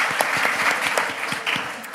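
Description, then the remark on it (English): An audience claps steadily for guests as they leave the stage, the dense patter of many hands forming a loud, sustained wash of applause with no voices breaking through. “Please give these guys a round of applause as they head off the stage.”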